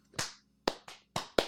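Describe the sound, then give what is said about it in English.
A group tries to clap once in unison but it comes out ragged: five sharp, bright hand claps scattered unevenly over about a second, each fading quickly, with no talking. “So, everybody clap your hands one time. Come on, clap it up.”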